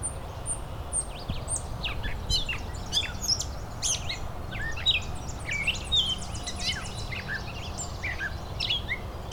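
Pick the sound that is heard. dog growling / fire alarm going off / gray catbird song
gray catbird song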